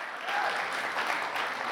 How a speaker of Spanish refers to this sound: ¿Cuánto le pueden dar un aplauso a Dios por eso?